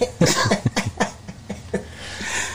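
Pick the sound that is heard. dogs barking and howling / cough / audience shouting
cough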